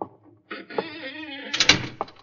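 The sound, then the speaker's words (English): The door of a house creaks open with a long, wavering hinge squeal, ending in a short clatter as it swings to a stop. No voices. “Well, this is apparently the only door to the house.”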